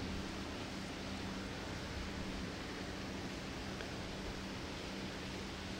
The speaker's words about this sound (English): So who would not say that the beautiful sound of these waterfalls creates such a peaceful and tranquil atmosphere of the mind? Because it brings our mind closer to the natural arrangement of God.